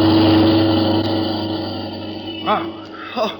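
car speeding past

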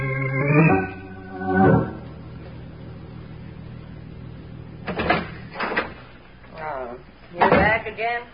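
door opening and closing

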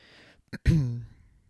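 throat clearing

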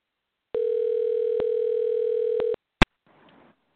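telephone dial tone

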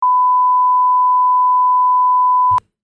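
censor beep

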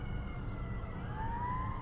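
ambulance siren passing by

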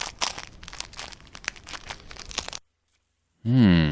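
crinkling

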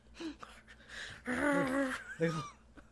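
dog snoring

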